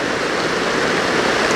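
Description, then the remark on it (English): Heavy rain pours down steadily, a dense, constant hiss of water with no pauses, loud throughout the short stretch, no voices present. “It is dumping out the water.”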